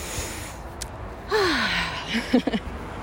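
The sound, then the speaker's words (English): A slow, deep breath drawn in and then released, with a soft voiced sigh on the exhale, taken outdoors against quiet wind noise. “So if you can, wherever you are, take a nice deep breath.”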